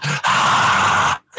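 A loud breath blows straight into a microphone as a harsh, rushing exhale lasting about a second. A brief grunt-like sound comes just before it, then a short silence and another breath.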